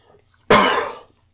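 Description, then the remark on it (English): A single sharp cough from a person trying to hold it back bursts out and trails off over about half a second, with no talking around it. “Sorry, I'm trying to fight this cough so much.”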